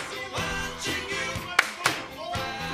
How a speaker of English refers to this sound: You're clapping.